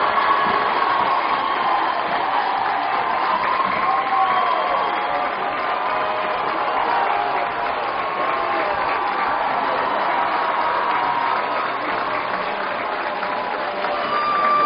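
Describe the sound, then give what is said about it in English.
A crowd on the Trojan side along the third base line roars and cheers after Jamie Meyer's home run over the center field fence by the Michigan State logo, a dense, steady wash of voices and clapping that stays loud for the full fifteen seconds without letting up. “Oh, the crowd on their feet on the Trojan side, which is the third base side of the field.”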